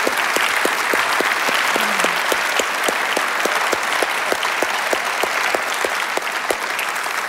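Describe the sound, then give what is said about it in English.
A crowd applauds steadily for the musicians of all the campuses, dense clapping filling the whole stretch at an even loudness, with some sharper rhythmic claps standing out in a regular beat. “To all the musicians in all of our campuses, give them a big, huge round of applause.”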